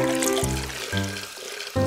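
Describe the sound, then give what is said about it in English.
Water pours steadily into a glass jar as the first step of a kids' science experiment, the ringing tone climbing in pitch as it fills. Fairly loud and continuous for a couple of seconds with no voices. “step one is to pour the water into the glass jar.”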